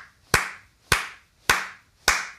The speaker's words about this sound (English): I got to clap my hands.